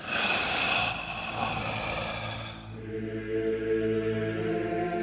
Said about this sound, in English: All the way in. A little bit of breathing.